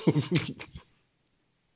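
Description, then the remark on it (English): A quick run of three or four short, throaty coughs, fairly loud, that trails off into near silence with a faint breath at the very end. “Couldn't even say that without coughing because my body was like, no, you can't.”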